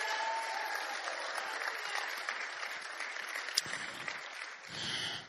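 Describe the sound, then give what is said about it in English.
An audience of West Virginians claps steadily and enthusiastically for several seconds, a dense wash of hand claps with scattered crowd shouts mixed in, staying loud throughout before briefly thinning near the end. “Come on, you West Virginians, get excited. Clap your hands, shout, do something.”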